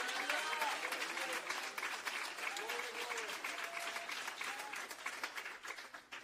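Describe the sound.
A church audience claps loudly to worship God in a dense, sustained burst of applause lasting several seconds, with scattered voices and faint cheering rising over the steady roar of many hands.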